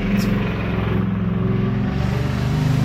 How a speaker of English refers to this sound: Sorry, there was a car going right by the street.